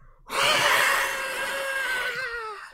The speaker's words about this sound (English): Squad B. We are in! Squad A and B scream out in unison.